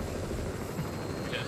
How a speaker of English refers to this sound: I meant the fucking helicopter.